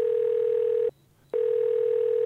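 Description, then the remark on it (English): A telephone tone while calling Taco Bell: a steady, mid-pitched electronic hum in two long bursts separated by a brief silence, with no voices. “All right, let's call fucking Taco Bell.”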